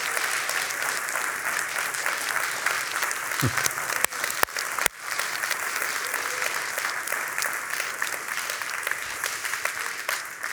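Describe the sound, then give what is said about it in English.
A large audience claps and cheers loudly and continuously for about ten seconds as a slide announcing a new building is shown, a dense, steady wash of applause with a few sharp whoops and claps standing out midway. “I'm not quite ready for them to put it up on the screen, but I want you to prepare yourself, get ready for some loud cheering.”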